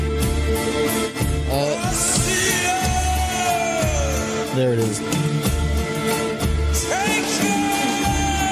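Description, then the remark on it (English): A loud song, almost 13 minutes long, with a man shouting his vocals in strained, sustained lines over dense, driving instrumentation that stays steady and intense throughout and grows louder and bigger as it goes on, with a brief spoken voice near the start. “Again, would you expect him to be shouting like that over this?”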